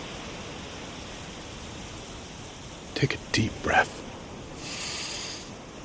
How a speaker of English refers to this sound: Let's just lie right here for a minute and listen to the surf.